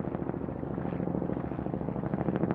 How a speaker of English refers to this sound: Kyrgyz helicopters, military helicopters, started to fly around overhead, and that's when everything changed.